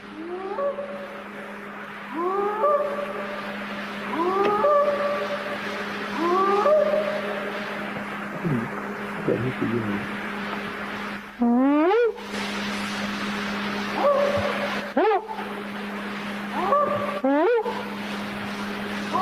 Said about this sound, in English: you could hear he was going whoop, and they were whooping back. And there's more to that clip.